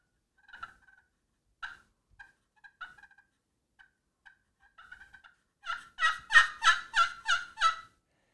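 Turkey yelps played on a cherry pot call with a glass surface: scattered soft, high chirping notes, then a loud, evenly paced run of about six raspy yelps.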